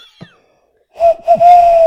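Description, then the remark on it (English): A person imitates an owl hoot: a short hollow note, a brief break, then a long steady mid-pitched hoot held to the end, breathy and fairly loud with no talking over it. “I can make an owl noise, and I'm going to use this moment to show my talents.”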